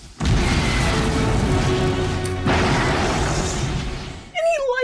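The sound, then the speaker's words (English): A loud explosion in an action movie scene goes off behind a character, roaring up at once and rumbling on, deep and dense, for about four seconds before cutting off; a brief voice cries out at the very end. “There's just a random explosion behind him.”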